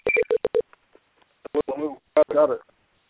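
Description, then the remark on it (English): A quick series of four or five clean, evenly spaced telephone keypad beeps, clear, as someone dials a phone to call in, followed by a few brief bursts of indistinct speech. “Okay, I'm calling in. There it goes.”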